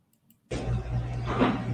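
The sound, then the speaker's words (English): After a brief quiet moment, printing machines at a printing company suddenly start up with a loud, steady mechanical roar over a low, constant hum that runs without a break, in a short 3-second video. No one speaks. “So that was just a little 3-second video that the printer sent. So you hear printers in the background”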